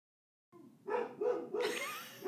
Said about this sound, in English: It's my dog barking at the mailman.